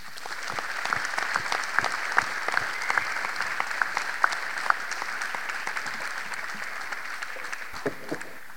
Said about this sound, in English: Let's give one more round of applause for all the candidates, please.